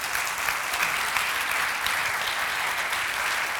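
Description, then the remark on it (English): Steady applause from a crowd, a dense, continuous patter of many hands clapping at an even loudness throughout, with no voices standing out above it. “Can we give a round of applause to...”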